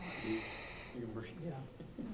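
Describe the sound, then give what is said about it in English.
A deep breath, demonstrating box breathing, rushes in with a loud, airy hiss for about a second, then a voice starts speaking, low and murmured, as the breath ends. “So here's the box breathing.”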